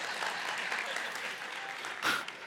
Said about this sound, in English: They clap because I catch with it. I never understood that.